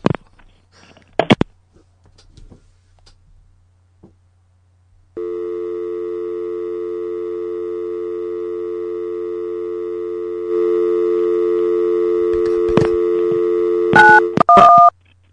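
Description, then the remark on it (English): A steady phone line tone hums for several seconds, then shifts slightly before a quick run of bright keypad beeps as a number is dialed to call the police; a few soft clicks precede it. “Okay, hanging up and calling the police.”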